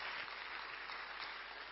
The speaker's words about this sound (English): Clap your hands, O ye people.